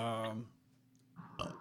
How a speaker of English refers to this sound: That was a weird burp.